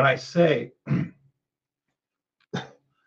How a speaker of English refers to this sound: and when I, excuse me, sorry about that, coughing right in your ear.